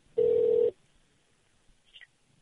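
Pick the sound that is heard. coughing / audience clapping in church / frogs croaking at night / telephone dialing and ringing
telephone dialing and ringing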